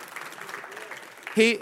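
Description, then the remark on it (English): An audience claps together in a dense, steady patter of many hands, then a single voice rises loudly over the applause at the very end. “Yeah, we can clap that.”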